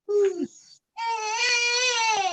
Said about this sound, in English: I hear a baby. A lady with a baby? Yeah. A lady with a baby.